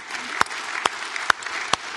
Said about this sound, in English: And we're blessed that we have almost 60% of our adult population involved in serving. And that is something I know you don't want to clap for yourself, but would you please celebrate that?